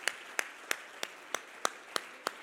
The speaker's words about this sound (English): Would you clap your hands and make a joyful noise to the Lord?